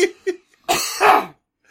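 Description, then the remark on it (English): Two short, sharp coughs from a person after laughing, followed by a loud, strained retching heave, harsh, then quiet with a faint breath at the end. “His laughs turned to coughs turned to wrenches.”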